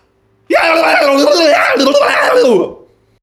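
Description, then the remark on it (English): Several voices let out a loud, sustained scream together for about two seconds, their overlapping pitches wavering before trailing off into quiet. “And so what we're going to do is go ahead and we are going to scream along with us.”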